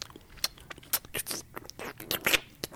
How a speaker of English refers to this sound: They 69 with sound effects of eating spaghetti.